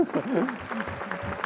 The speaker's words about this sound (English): Can Can we clap for that?